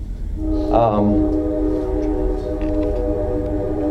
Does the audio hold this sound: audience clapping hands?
no